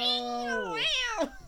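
A cat lets out one long, drawn-out meow that holds steady, then rises and dips into a falling, whiny tail. It sounds fairly loud, with nothing else around it.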